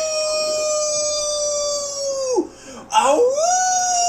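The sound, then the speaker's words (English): A male dog howls loudly, holding one long wavering note, letting it sag and break off, then sliding back up into a second howl. “So here he is howling because he's a degenerate furry.”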